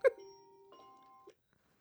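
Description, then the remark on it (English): A bell-like electronic chime, marking a guest calling in, sounds once, struck sharply and then held as a steady ringing tone that shifts slightly partway through before cutting off after about a second. No one speaks. “Speaking of, that is our guest. Saved by the bell,”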